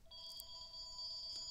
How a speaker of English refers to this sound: Okay, and the phone rings. That always happens.